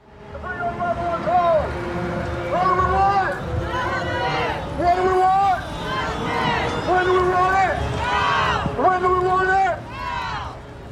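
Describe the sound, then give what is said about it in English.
A crowd at a street rally for the MMIP movement in Northern California, dressed in red and black and walking down the street calling for justice for the missing and murdered in Humboldt County; many voices chant a repeated rising-and-falling phrase in steady rhythm over a constant wash of crowd noise, loud throughout. “This is a rally for the MMIP movement in Northern California. A crowd of people walk down the street dressed in red and black, the colors of the MMIP movement.”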